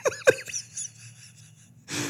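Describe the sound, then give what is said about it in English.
A sneeze: two quick, squeaky catching breaths, a short pause, then a loud, hissing burst of air at the end. No one speaks. “Sorry, I had a impromptu sneeze that came out of nowhere.”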